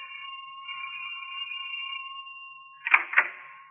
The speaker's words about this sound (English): Our scene is a fashionable home in the suburbs of New York. A young woman of great poise and beauty is about to answer the insistent ring of her doorbell, unaware that her unexpected visitor is accompanied by death.